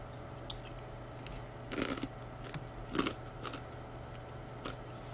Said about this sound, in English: Sorry, guys, if you hear me chewing, I am munching on some ice because it is my favorite thing.